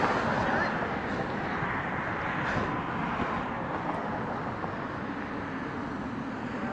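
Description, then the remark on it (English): Steady rumble of traffic on a busy main street, a continuous wash of engine and tire noise with no single car standing out, at a moderate level. “This is a main street. So you're hearing cars in the background.”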